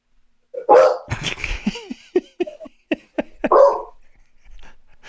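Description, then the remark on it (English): A big dog barks repeatedly in a quick, uneven burst, with a few sharp yips and a whimpering tone between deeper woofs, loud, with no talking. “If anyone is listening and not getting that, there's a dog in the background. There's a big dog.”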